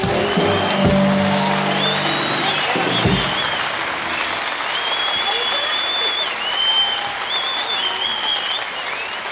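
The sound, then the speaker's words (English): Sustained audience applause as a female singer starts to sing a song, a dense, steady wash of clapping with some cheering mixed in, while a brief musical tone sounds underneath at the start. “Doesn't it give you like goose pimples when you hear an audience respond like that?”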